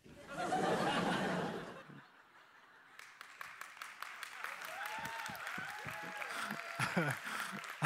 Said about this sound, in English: It's the two guys who actually liked it who said, hey, let's clap because maybe we'll get more Monty Python.